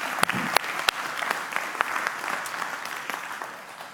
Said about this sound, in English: Round of applause for all of our moms, the moms here and moms to be.